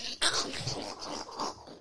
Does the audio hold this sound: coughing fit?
no